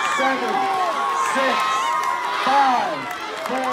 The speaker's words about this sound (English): And as you can see, the crowd is now getting a little more excited as we are getting closer to the start of rope burning 2018. The crowd is here for rope burning 2018. And we are about to begin.